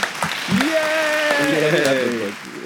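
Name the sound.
a few people clapping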